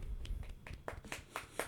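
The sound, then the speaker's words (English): A short run of light, polite hand claps, about seven soft claps at a slow, steady pace, each a quick crisp pat, fairly quiet over a low background hum. “I'll give you a golfer's clap.”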